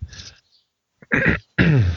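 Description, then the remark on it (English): A harsh throat clearing followed by two sharp, rasping coughs from a sick person, separated by brief silences, with no talking. “I'm going to have to turn off my mic a lot to cough.”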